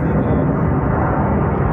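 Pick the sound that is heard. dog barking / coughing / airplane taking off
airplane taking off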